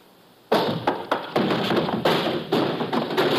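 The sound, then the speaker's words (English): A heavy barrel rumbles loudly across a hard warehouse floor, its rolling noise broken by a series of clattering thuds and bumps as it slams into someone, with no voices. “Give me time to start that barrel rolling.”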